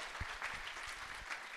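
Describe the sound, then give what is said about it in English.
An audience at the Disciples Seminar applauds steadily for a speaker, a dense wash of many hands clapping with no talking over it. “Guys, at the Disciples Seminar, we want to honour our speakers, so let's give a big round of applause again to Cassie.”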